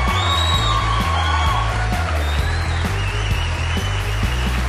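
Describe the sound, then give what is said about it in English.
A crowd applauds and cheers steadily, with whoops and shouts rising over continuous clapping, all set against a repeating low musical beat that pulses underneath the whole time. “Hey, let's keep that applause going while I welcome my dear friend Brad to the stage.”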